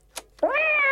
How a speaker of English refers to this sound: Check this out. I've got all kinds of stuff this week. Bats. Cats.